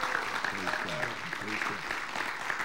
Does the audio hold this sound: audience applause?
yes